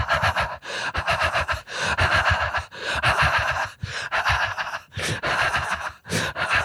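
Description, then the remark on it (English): A person imitates a cat's breathing with loud, rapid, raspy panting, a steady run of breathy huffs with brief pauses between groups, and no speech. “Dude, I'm just listening to the cat. No wonder cats are always so pissed off. They breathe like...”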